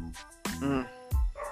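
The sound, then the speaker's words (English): Dogs barking around midnight: a couple of sharp, loud barks in quick succession, followed by another short, punchy bark, with no talking over them. “These fucking dogs. Man. What are they barking at midnight?”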